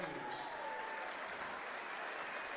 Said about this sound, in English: And the Hawkeye seniors get a round of applause.